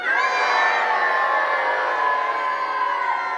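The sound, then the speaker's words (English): An audience imitates the moo of a bull gaur together on a count of three, one loud, drawn-out chorus of overlapping pitches that holds steady for about three seconds before easing off slightly. “Its moo can be heard a mile away. Should we try mooing?”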